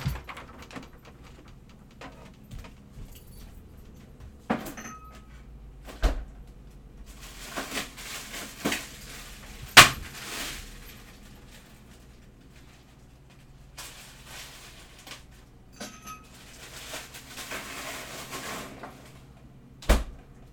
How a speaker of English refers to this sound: That sound you heard was ice cubes. It wasn't me falling,